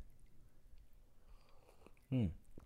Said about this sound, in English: All right, let me take a sip of my coffee here.